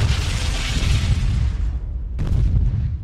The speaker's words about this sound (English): To the east, an explosion rings out on the buildings next to the Iacon Hub. Ooh, fireworks. No, wait. And on the western side, explosions ring out on that building as well.